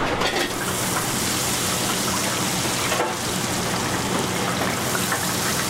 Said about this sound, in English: You gonna grab the Alaskan Pollock? Just get the coating and a bit of butter. Our signature. I'm gonna fry it now with a couple pieces of Pollock.